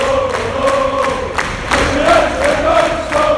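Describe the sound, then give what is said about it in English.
A large crowd of United football supporters and players applauds steadily in the stadium, with sharp clap bursts over a dense roar and some sustained chanting tones running underneath, loud throughout. “Very prolonged, a bit of applause from the supporters and the players actually.”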